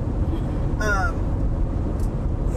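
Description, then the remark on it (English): A car rushes past over a steady, heavy road rumble, with a brief high tonal blip near the start and faint indistinct voices in the background. “That car I thought was coming over.”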